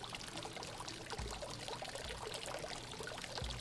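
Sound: trickling water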